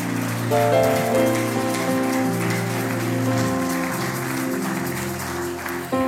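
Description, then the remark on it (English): A crowd claps steadily in a dense, crackling wash of applause for the speaker holding the microphone, with sustained keyboard or organ chords playing underneath, fairly loud and continuous for several seconds. “But you must clap for me.”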